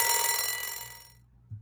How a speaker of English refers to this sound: Yeah, I practiced that one a few times because I didn't want to hear the buzzer of shame go off before I was done.